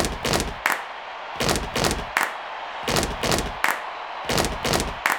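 Two heavy foot stomps followed by a sharp hand clap, repeated in a steady, driving stomp-stomp-clap pattern about four times. Loud and percussive, with no voices.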